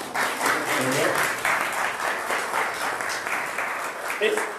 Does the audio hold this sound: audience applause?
yes